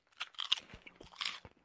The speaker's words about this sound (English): You know, when you bite into this chip, it's lime.